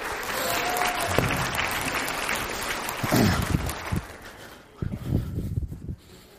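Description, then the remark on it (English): An audience breaks into applause, a dense wash of many hands clapping at steady volume for several seconds before thinning out, with a few voices and murmurs mixed in near the end. “Somebody clap while I do something here.”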